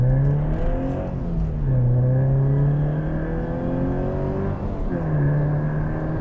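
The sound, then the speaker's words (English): A car engine accelerates hard, its loud humming pitch climbing steadily, then dropping briefly at each of two gear changes before rising again. No one speaks. “The first chance I've had to actually put my foot down for the last half an hour.”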